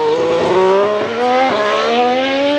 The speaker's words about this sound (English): How does that affect the engine sounds? Formula One now is actually a hybrid, and so they have a combination of electric motors, turbochargers, and a V6 engine.